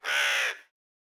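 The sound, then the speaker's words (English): A human voice imitates a crow's caw as a call: one harsh, raspy call lasting about half a second, loud, then silence. “And raises the sword high into the sky, looks up, and utters from her human throat the caw of a crow as she calls her mistress.”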